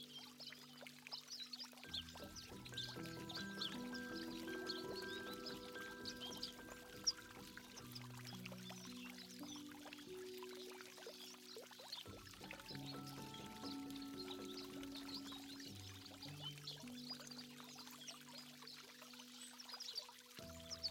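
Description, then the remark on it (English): Water trickles and splashes steadily from a fountain in a monastery courtyard filled with lemon trees, where white doves are drinking, a continuous soft hiss, while sustained low tones hold and shift in slow steps underneath. No one speaks. “and in the middle of it, white doves are drinking from a fountain.”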